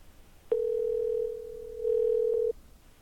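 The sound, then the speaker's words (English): A single two-second ringback tone from a phone line on an outgoing call, a steady electronic hum that starts and stops cleanly, fairly loud with nothing else around it. “But we gonna get somebody on this phone.”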